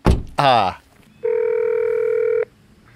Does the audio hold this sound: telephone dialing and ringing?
yes